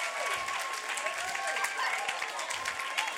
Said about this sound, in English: Hey, look how the sisters are clapping. In a long time, I felt sisters clapping for me. Like, sisters, clap one more time. Clap one more time.